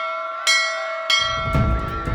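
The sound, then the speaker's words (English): A galley bell clangs three times in quick succession, each bright metallic strike ringing on and overlapping the last, with a low rumbling noise building underneath toward the end. “Ma raised her handkerchief and the galley bell rang out.”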